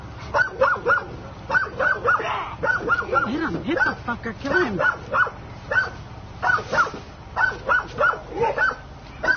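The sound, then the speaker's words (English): A pit bull trying to attack three firefighters barks aggressively in rapid, repeated bursts that keep going throughout, loud, while the firefighters, holding axes, shout urgently over the barking. “There's another one barking.”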